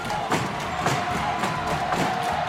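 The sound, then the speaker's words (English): A large crowd roars and cheers in a dense, continuous wall of noise around a big ring where something shakes and knocks people around, chains clanging as they smash on each other, with sharp rhythmic impacts punching through roughly every half second. “Crowd goes fucking wild.”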